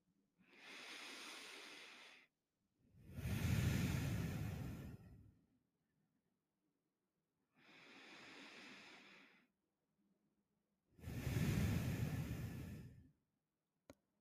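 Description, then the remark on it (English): Slow, deep breaths at the start of a guided relaxation exercise: two full inhale-exhale cycles, each a long airy draw followed by a heavier, breathier release, with quiet pauses between. “We're going to start by taking a few deep breaths together.”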